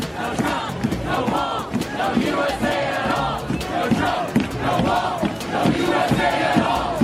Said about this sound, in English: This echoes one of the chants heard at the anti-fascist demonstration in Berkeley last weekend.